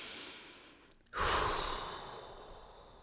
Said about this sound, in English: imagining the breath kind of whooshing in and spreading the molecules apart. You know, if it works for you, do it. If it doesn't work for you, let it go. And another breath.